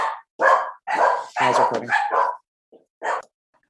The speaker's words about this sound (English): Okay, sorry. The food dinner was delivered to the door and the dogs lost their minds.